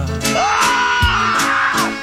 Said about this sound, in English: Shower's cold, really, really cold, really, really cold. So you scream a cappella.